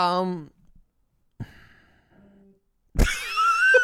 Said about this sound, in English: was that you or your phone? That was my phone.